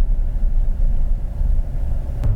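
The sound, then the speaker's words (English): A pickup truck engine drones steadily under load while towing, a continuous low rumble heard from inside the cab with no talking, plus a single faint tick near the end. “But with this truck, I just feel like it's too eager to go into high gear and try and lug compared to what it should be doing”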